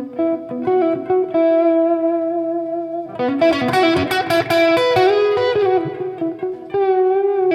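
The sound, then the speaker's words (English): An electric guitar on an amp's crunch channel, with little distortion, solos with sustained melodic notes washed in delay and reverb, then breaks into a busier, brighter flurry of bent and picked phrases before settling back into held tones. “And of course, if I was doing some sort of rhythm thing, I'd probably back off my delay or my reverb a little bit, but I'm using it for soloing right now.”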